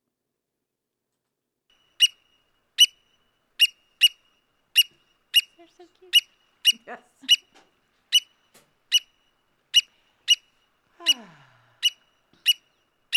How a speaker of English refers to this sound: Black oyster catcher.